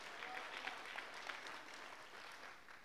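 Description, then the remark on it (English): An audience clapping their hands to the Lord in a dense, continuous burst of applause, steady and moderately loud throughout, with no voices standing out. “We clap our hands to the Lord.”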